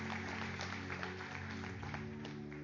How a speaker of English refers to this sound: This, yeah, you can clap at scripture. I love when you just clap at the word of God.